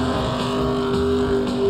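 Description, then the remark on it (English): Loud, steady roar of two straining car engines, a Ford and a Chevy, revving against each other in a tug of war, held at high pitch, a continuous droning hum with no breaks and no voices, dominant throughout. “It's like a tug of war.”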